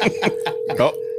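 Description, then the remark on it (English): A phone rings with a steady, continuous electronic tone that holds through the whole moment, while voices chatter in short bursts over it. “I hear a phone ringing.”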